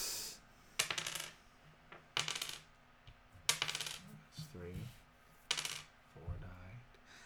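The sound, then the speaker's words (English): A coin is flipped and lands repeatedly, giving four bright metallic clinks with a short ringing tail, spaced roughly a second or two apart, with faint murmuring voices between them. “I just flipped my coin.”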